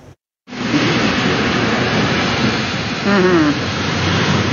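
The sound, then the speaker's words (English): A dense, steady, loud roar of heavy rain coming down extremely hard during an intense early Friday evening storm with hail and flash flooding in Enderby, a North Okanagan city, with a faint voice-like tone rising briefly near the end. “The rain was just coming down extremely hard.”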